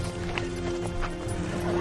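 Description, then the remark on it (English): Horse hooves clip-clop at a steady walking rhythm, several even strikes at moderate volume over a constant low hum, with no one speaking. “These horses are gorgeous.”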